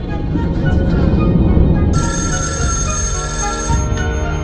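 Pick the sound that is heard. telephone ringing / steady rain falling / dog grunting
telephone ringing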